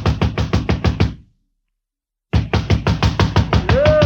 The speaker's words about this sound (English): But I did get the address of the driver who worked nights there, and 10 minutes later, I was pounding on his door.